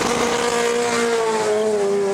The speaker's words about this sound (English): That's for our favourite viewers, yeah, that's the Corvette leaving in an angry way.